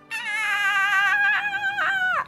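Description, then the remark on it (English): A toddler having a tantrum lets out one long, piercing screech lasting about two seconds, shrill and wavering in pitch, then cracking and dipping near the end before cutting off. No other sounds accompany it. “dragging a toddler clamped to your ankle, while someone assails you with some advice you didn't ask for, you don't need, and you can't really hear over the screeching anyway.”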